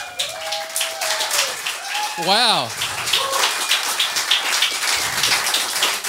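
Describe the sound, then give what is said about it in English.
Thin, scattered, sarcastic audience clapping for an audience member celebrating his 18th birthday patters steadily throughout, with a voice exclaiming over it and a brief warbling tone around the middle. “I've never heard a sarcastic clap before.”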